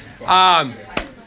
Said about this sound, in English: Obviously, we might crack a window over here, something. But actually, well, I just kind of open that back door. We'll just let the air flow.